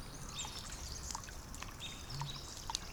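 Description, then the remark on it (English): Water trickles and drips steadily through puddles in a quiet, rain-saturated forest, a soft continuous wash with small splashes, while birds chirp and whistle faintly in the background. “We listen to the puddles in this forest.”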